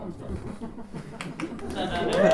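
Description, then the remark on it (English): An audience breaks into clapping: a few scattered claps rise out of crowd murmur and chatter, then the applause builds louder and denser toward the end. “At first, I didn't think anyone was going to clap, and I was going to be like, oh shit, is this being recorded?”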